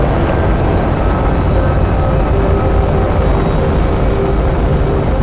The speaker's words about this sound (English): Ignition sequence start. 6, 5, 4, 3, 2, 1, 0. All engine running. Liftoff. We have a liftoff. 32 minutes past the hour. Liftoff on Apollo 11.